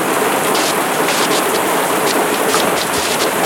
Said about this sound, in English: All right, I'm back, and I wanted to step outside because it is a deluge. I mean, the amount of rain that is coming down right now is unbelievable.